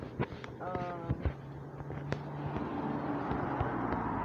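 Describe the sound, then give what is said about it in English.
A car passes outside, its muffled rumble slowly swelling in the second half. A few sharp knocks and a brief tonal hum sit on top, and faint voices murmur. “There's a car.”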